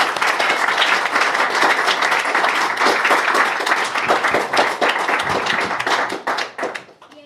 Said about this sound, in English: Yes. Can we have a round of applause, please, for the British Interplanetary Society?